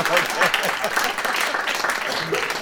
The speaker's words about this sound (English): We could have a little applause for that.